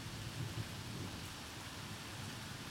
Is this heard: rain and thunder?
yes